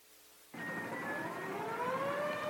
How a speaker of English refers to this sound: I'm speaking to you from the roof of the John Hancock Center in Chicago, Illinois. The noise you hear is the air raid sirens, warning the people to evacuate the city as Martians approach.